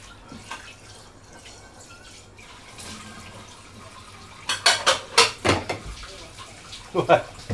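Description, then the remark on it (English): Dishes and cutlery clatter and clink as they are rinsed in a little pail of dirty water, with sharp bursts of knocking and splashing toward the end over a low background hum. “Don't dip inside that container of dirty water.”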